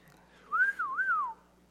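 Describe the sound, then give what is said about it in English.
A short, wavering whistle that rises, dips and rises again before trailing off, heard alone against a faint background hum, lasting under a second. “I can't whistle.”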